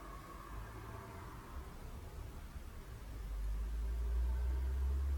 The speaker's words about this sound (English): Just let the cars come and go.